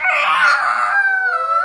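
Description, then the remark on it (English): A person voices a single loud, drawn-out roar in imitation of a dinosaur, strained and howling, held for a couple of seconds with no other talking. “That's what dinosaurs do. … had another great weekend. Roar! Roar!”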